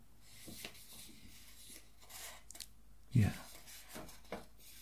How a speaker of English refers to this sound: Hear it. It's my fingers touching the paper. Do you want to touch it? Try it.